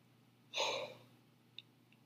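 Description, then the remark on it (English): A single breathy yawn, a short airy exhale swelling and fading over about half a second, heard alone with no talking, followed by a faint click. “Again, don't know why I'm yawning so much, but yeah.”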